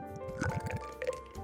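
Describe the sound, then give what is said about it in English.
Double dry-hopped India Pale Ale beer, 6.2% ABV, glugs into a glass right in front of the mic in a quick run of gurgling pulses, then a brief fizzy splash as the pour settles, leaving a pearly white head about three fingers high. No talking. “I'm trying to get a sound of the pour there.”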